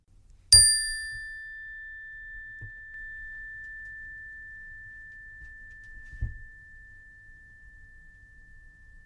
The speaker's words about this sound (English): Now, I will ring a chime. The idea is that you listen intently to the sound of the chime and that you listen until you hear it no more.